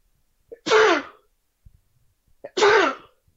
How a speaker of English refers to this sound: Anyways, one second, I'm about to sneeze.